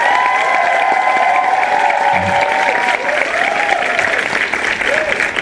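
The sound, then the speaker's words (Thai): An audience claps steadily for about five seconds in applause for fortunate families, a dense, even wash of many hands at a constant loud level, with a faint voice briefly audible beneath the applause. “ปรบมือให้ครอบครัวที่โชคดีเพราะเราสู้หน่อย”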